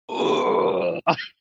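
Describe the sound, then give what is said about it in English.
A person imitates the pained groan made on hitting the ground in a fall: one long, strained, low-pitched 'ugh' held for about a second, then a brief breathy grunt right after. Loud, with no other talk. “But I literally went, you know, when you hit the ground and you go, ugh.”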